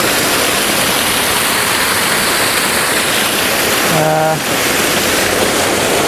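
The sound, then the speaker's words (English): A waterfall roars steadily and loudly, a dense unbroken rush of water filling the whole clip, with a short tonal blip briefly cutting through near the end. “It's tricky because I want to make more of the red rocks, but I also want to make something of the shape of the waterfall as well.”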